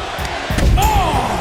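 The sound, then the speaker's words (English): A wrestler is slammed onto a steel chair with a wrestling move during a wrestling match, landing with a sudden, loud thud, followed by an arena crowd's rising roar and a sharp shout of reaction. “EDT onto the steel chair by Rhea Ripley”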